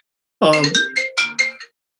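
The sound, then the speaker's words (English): A phone ringtone sounds: a sliding opening tone followed by four or five short, bright, melodic notes in quick succession, fairly loud, with no one talking. “I forgot to turn the phone off.”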